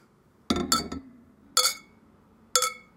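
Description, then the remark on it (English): Glasses clink together in a toast: a quick double clink, then two more single bright, ringing clinks about a second apart, clear with no talking. “Wow, we all did cheers.”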